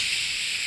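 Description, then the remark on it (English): A voice imitates old film static with a steady, breathy hiss, bright and even in loudness, held unbroken for under a second with no words. “No, I'm not talking about like static, like.”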